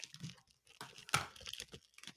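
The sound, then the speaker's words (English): Plastic wrapper crinkling and tearing as a package of Earl Grey tea cookies from a Charleston coffee shop is opened, a series of irregular crackly rustles with one sharper rip near the middle, fairly quiet with no talking. “So I'm going to go ahead and open mine real quick.”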